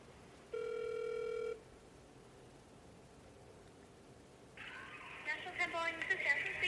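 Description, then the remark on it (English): A single ringback tone buzzes for about a second on an outgoing phone call to a business about a lost black bomber jacket, followed by a quiet pause before a faint voice picks up over the line. “If I stop it now and then phone call, I guess.”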